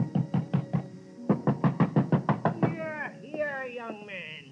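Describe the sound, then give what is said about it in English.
Heavy, rapid pounding on a door, a dozen or so loud thumps in two close bursts, followed by a wavering, ringing tone that rises and falls: a man's doorbell being rung and his door pounded at his address in Danbury. “But ringing his bell and pounding on his door got me nothing.”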